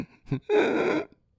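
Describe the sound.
A voice imitates the heavy, wheezing breathing of a camerawoman heard in the background of Bush videos: a couple of short huffs, then one long, rasping, strained exhale, fairly loud, with no other talking.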